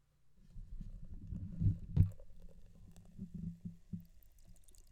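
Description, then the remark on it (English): Double IPA beer pours into a glass, a low, bubbly gurgle with uneven glugs and a brief sharper splash partway through, then a steady foamy trickle. No one speaks. “Have you pour yours out?”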